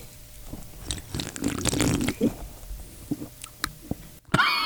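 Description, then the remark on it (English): Wet slurping of a slushy iced Truck Show Dr. Pepper soda, with crackly, gurgling bursts that swell for about a second, then scattered sips and clicks. Nobody speaks. “Well, I'll listen to the slurp.”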